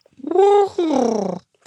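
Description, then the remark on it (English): A human voice imitates a curlew call: two drawn-out, whistly syllables, the first rising and holding, the second sliding downward, sung fairly loudly with no other talking. “Do you curlew impression?”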